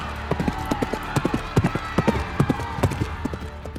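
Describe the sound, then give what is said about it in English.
Horse hooves galloping at a quick, steady rhythm, each hoofbeat a sharp thud with faint background noise underneath. “Claudius leaned forward on his saddle and squinted at the distant, galloping horse.”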